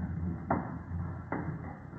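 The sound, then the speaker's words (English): A wooden stairway, climbed by Holmes and Watson, gives two sharp creaking knocks, spaced nearly a second apart, over a low steady hum, with no voices. “Ah, this confounded wooden stairway, it creaks so.”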